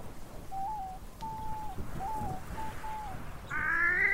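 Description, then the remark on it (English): A wood duck calling outdoors, a series of short, thin whistled notes spaced about half a second apart, ending in a louder, harsher drawn-out call, with no one speaking. “Did I just hear a wood duck?”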